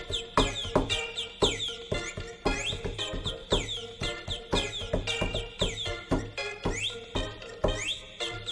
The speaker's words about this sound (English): There it is. That bird! Yeah! Yeah!